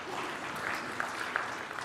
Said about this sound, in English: All right, one on the way in June. You know, again, and you can clap.